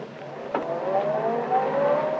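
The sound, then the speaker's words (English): A man gets into a car and it starts: the engine catches with a short burst and then revs steadily, its pitch rising and climbing again, loud with a constant rumble underneath and no voices. “He's getting into the car.”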